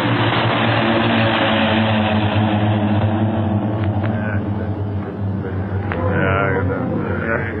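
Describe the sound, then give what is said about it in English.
A steady, loud drone of propeller aircraft engines with strong low harmonic hum, continuous throughout, as planes pass overhead; faint scattered clicks and noise over the engine roar. “No one must move until those planes are out of sight.”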